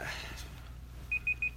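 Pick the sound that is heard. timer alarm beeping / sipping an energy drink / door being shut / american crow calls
timer alarm beeping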